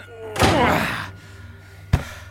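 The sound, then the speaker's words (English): A heavy door in a cave slams shut with a loud, booming crash that rumbles briefly, followed a moment later by a second sharp thud against it. “Help me with this door.”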